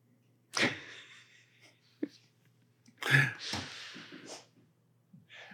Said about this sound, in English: If you heard that, would be a dog sneeze from our pot cake producer, who I had no idea was under the table.